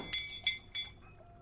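A glass of water slips from a hand and breaks on the floor, three sharp, bright crashes with ringing shards in quick succession, fairly loud, then a quiet tail with no voices.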